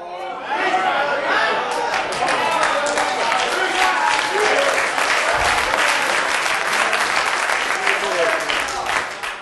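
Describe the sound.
A sizable crowd claps steadily and loudly for several seconds, a dense, sustained patter of many hands with faint voices and chatter mixed underneath.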